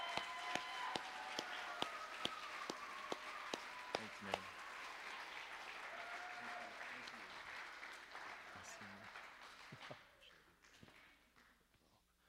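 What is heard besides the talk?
audience applause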